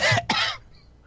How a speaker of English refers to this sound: Well, I mean, that would be me trying to get a drink in between talking and failing. Yep, thanks for coughing in everyone's ear.